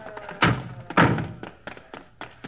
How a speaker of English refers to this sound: Hey, that door's stuck. Wait a minute, I'll give you a hand.